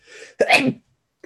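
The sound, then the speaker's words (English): A single loud sneeze: a breathy drawn-in inhale, then a sharp explosive burst that trails off, followed by a faint click. “Sorry, I'm gonna sneeze again.”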